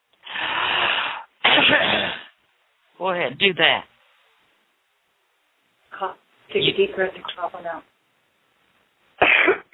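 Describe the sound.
A person coughs in several harsh, forceful bursts after being told to take deep breaths and cough during a prayer. The first two coughs come back to back, with brief spoken prompting in between and more rough coughing later, fairly loud.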